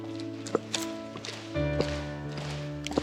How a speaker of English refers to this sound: You know how to stomp? Someone next to you, watch them if you're not sure what to do. And we're going to do it together. Everybody ready? Here we go.